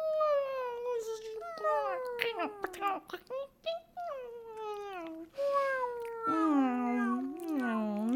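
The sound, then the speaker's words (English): A voice imitates cat noises, producing a continuous string of whiny, sliding meows and yowls that bend up and down in pitch, fairly loud, with brief breaks between. “Cat noises.”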